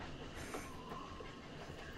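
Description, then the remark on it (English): A train rolls along the rails at night beside dark mountain crags under an open starry sky, with a steady, low rumble and a faint rattle of wheels, filling the scene evenly without pause and with no voices. “Just an absolutely open sky, stopped only by the dark crags of the mountain sort of reaching off on the right side of the train.”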